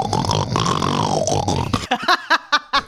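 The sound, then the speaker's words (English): A voice does a long, throaty pig grunt, rough and low, then breaks into a run of short, snorting grunts in a quick choppy rhythm. “Okay, so your word is pig.”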